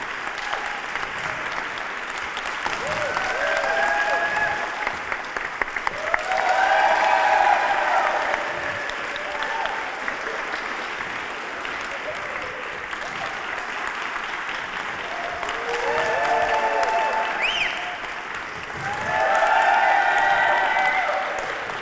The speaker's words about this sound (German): Also klatscht bitte, wenn ich hinter dem jeweiligen Menschen stehe, für den jeweiligen Menschen. Klatscht bitte für alle, sonst wird es peinlich.